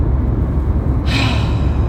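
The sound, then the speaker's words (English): A single deep breath taken into the microphone, a long airy inhale that grows noticeably louder and breathier about halfway through, with no talking. “I just got a synchronicity and I'm just like breathing because I'm grateful for it.”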